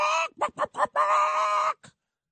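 A chicken clucks loudly: a short squawk, three quick clucks, then a drawn-out bawk and one faint final peep, with no talking.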